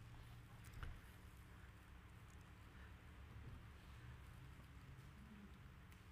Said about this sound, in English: I know y'all hear this, the rain, the sound of the rain. That's a prophetic, I believe that's something prophetic that God is doing. Literally, he's allowing the floodgates of heaven to open up over the vineyard, and he's pouring on us.